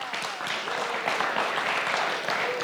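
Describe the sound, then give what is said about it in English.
A crowd applauds steadily, a dense wash of many hands clapping that holds at an even, fairly loud level without letting up. “So for a pause, you should just applaud for them while I do.”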